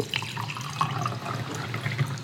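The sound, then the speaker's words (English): Water runs steadily for a couple of seconds, a continuous splashing stream like liquid filling a glass or sink, with small bright splashes scattered through it. “More water.”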